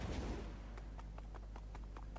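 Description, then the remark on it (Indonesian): Rapid, evenly spaced clip-clop hoofbeats from a horse being ridden in a video game, a steady train of about a dozen sharp clicks over a constant low hum, with no one speaking. “Tuk tuk tuk tuk tuk tuk tuk tuk tuk tuk tuk tuk tuk. Ya naik kuda gue.”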